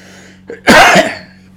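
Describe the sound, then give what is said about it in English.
A single loud cough, brought on by the rain, bursts out after a short sharp intake of breath, standing alone with no talking and a faint low hum underneath. “Excuse me, folks, but the rain is causing me to have a little bit of cough today.”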